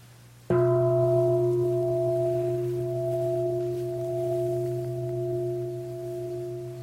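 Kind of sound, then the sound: signal or alarm, meditation bell ringing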